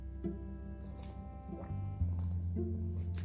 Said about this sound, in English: Excuse me, I'm drinking water, I'm sorry.